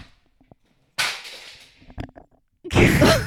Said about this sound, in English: My camera just fell literally off the tripod, off the ring light, onto the floor,